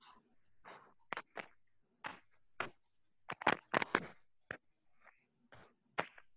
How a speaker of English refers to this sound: He was just licking the mic. He was licking the mic. It didn't sound great, but I'm telling you, it looked great.